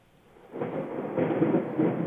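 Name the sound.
thunder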